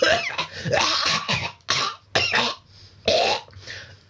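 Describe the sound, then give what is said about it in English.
Someone acts out a harsh coughing fit: a rough, sputtering run of coughs followed by several separate loud hacks with short gaps between them, and no talking. “Although Daddy was ill, remember. Quite a few coughing fits.”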